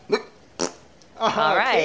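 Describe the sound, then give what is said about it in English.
Two short, sharp puffs are followed by a longer, buzzy, wavering fart noise. It is fairly loud, and no clear words are spoken. “I farted to death. My burp caught up with me.”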